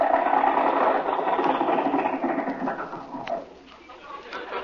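A rattling old car engine chugs loudly, then its pitch slides downward as it slows and winds to a stop, leaving a quieter, softer rumble at the end.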